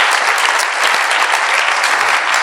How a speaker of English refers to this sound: Let's have a proper round of applause for Lydia.